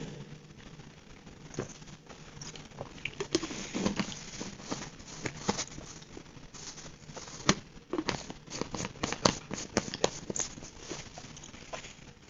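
Irregular crinkling and rustling of a small plastic packet that looks like a packet of white powder, being handled and searched, with sharp little crackles clustering more densely toward the end. No one speaks.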